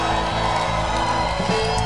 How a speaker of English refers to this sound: Maybe you should add a shout of praise.